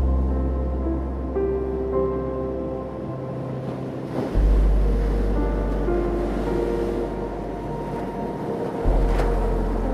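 Steady ocean waves wash in and out along a shore, a soft continuous rush layered over low, sustained droning tones that shift pitch a few times. No one speaks.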